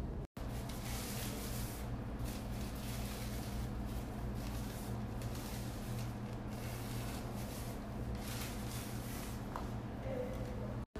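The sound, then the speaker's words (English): A plastic bag dragged along on a string, a foley imitation of a bag rolling in the wind, gives a continuous crinkly, scraping rustle, steady and fairly loud for about ten seconds, with rough surges in the hiss and no voices. “How we did this was we tied a string to a plastic bag and pulled the string.”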